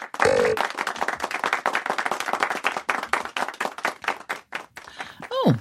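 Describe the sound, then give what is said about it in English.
Quick, steady hand clapping repeats for several seconds, a dense run of sharp claps, with short vocal sounds at the very start and a rising voice sweep near the end. “Clappity clap clap clappy clappy chop.”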